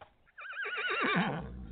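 A horse lets out a single loud whinny, its wavering pitch sliding downward in rapid trills before ending in a low, breathy snort.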